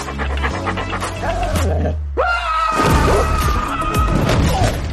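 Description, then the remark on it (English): Heavy, rhythmic panting from a big dog, loud, with a breathy vocal sound partway through and some low rumbling thuds in the background. “About the dog?”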